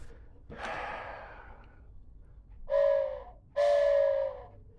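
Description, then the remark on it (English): A loud train whistle sounds two short, steady blasts in quick succession, preceded by a breathy rush of air. The tone is strong, with no talking. “Oh boy, that was a sick whistle.”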